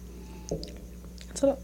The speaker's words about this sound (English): She drank that shit passionately. She said... And she gulped.